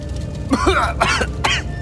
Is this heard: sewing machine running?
no